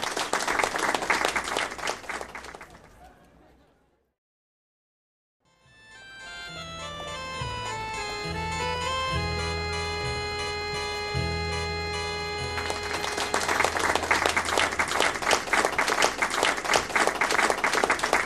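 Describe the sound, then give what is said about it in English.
An audience claps loudly for the players after a stage show for a few seconds, then falls silent. A tinkling, chime-like melody plays, and the dense applause surges back in over the music to the end. “Let's have another round of applause for our players.”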